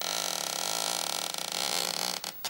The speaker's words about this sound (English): For atmosphere, a balloon makes for a nice creaky door.